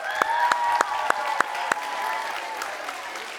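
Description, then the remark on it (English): A crowd bursts into applause for the leaders present, a dense wash of clapping with a few sharp, evenly spaced claps standing out at first, plus a faint tonal cheer, holding steady before thinning slightly. “If you're a leader here, can we give them a round of applause?”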